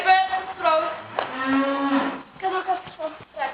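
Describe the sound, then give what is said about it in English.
A cow in a video clip, pulled over a hurdle by a woman, moos loudly in several drawn-out, harmonic calls, one long bellow in the middle, with short breathy grunts between them. “She kind of pulled the cow over. Still, you don't see a cow jumping.”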